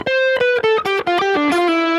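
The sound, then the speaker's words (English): Electric guitar plays a quick descending run of sustained, harmonically rich notes with a light reverb tail, fairly loud with no talking; played through a Chase Bliss Mood pedal and a harmonizer into a Kemper modeling a Soldano SLO 100 amp. “There's just a little reverb.”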